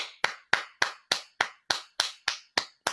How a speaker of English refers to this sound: I got to give this girl a hand clap.